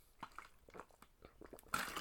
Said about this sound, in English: Now, let me take a sip of water for this one because, okay.